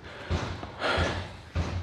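Three heavy hammer blows, roughly evenly spaced, as a neighbor next door bangs out a dent in his garage; each thud is muffled, with a brief rumbling tail and no voices.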